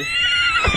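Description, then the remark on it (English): A person imitates a horse's whinny, a short, loud, shrill neigh with a wavering, trembling pitch that drops slightly at the end, with no other talking. “Do the horse again.”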